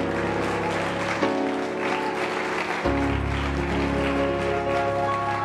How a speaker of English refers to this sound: In Jesus' name, would you lift up your hands and clap your hands as loud as you can?